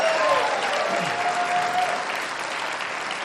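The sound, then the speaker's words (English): An audience claps for guests, steadily, in a dense, even wash of applause that holds at a fairly loud level for several seconds with no talking over it. “So can we clap one more time for our guests?”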